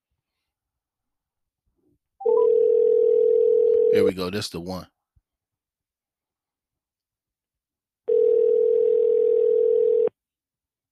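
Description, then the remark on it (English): An outgoing phone call rings twice, each a steady two-second tone separated by a long pause, with a man speaking briefly right after the first ring. “I am determined to get somebody on the phone. Let's go. I'm determined to get somebody on the phone now.”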